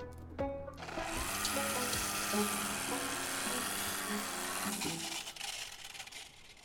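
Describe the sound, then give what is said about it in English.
A plugged-in electric trimmer (weed whacker) whirs loudly through tangled, jungle-like vines for about four seconds, its buzzing motor pitch wavering and straining under load, then winds down, leaving faint rustling. “I mean, it's doing battle with, like, full-on, like, jungle vines. It did do some trimming.”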